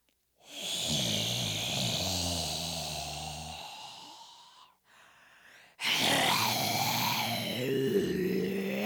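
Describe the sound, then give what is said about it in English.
A voice imitates a dragon's heavy breathing and growling: a long, loud, rasping growl, a brief quieter breath, then another forceful breathy roar, with no talking. “It was a magic marker breathing dragon.”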